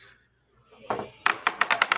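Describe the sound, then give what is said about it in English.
Dice are rolled across a tabletop for a damage roll in a tabletop role-playing game: a soft tumble, then a quick run of sharp clicks that bounce and settle over about a second, with no talking. “Please roll damage.”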